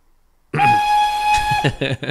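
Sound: whistle sound effect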